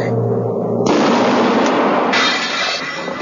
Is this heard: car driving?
no